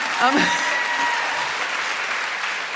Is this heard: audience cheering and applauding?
yes